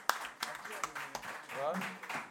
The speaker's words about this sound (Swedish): Applåd och grejer.